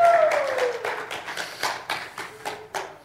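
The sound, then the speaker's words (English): An audience applauds a pastor's wife with a steady, dense patter of many hands clapping, fairly loud at first and gradually thinning out over about three seconds. “Would you just join me in giving my wife a warm round of applause?”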